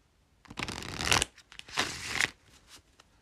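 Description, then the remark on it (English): Two quick bursts of a Tarot Mucha deck being shuffled, each a dense, crisp riffling flutter lasting under a second, fairly loud, with a short pause between and no voices. “Let me do a few quick shuffles.”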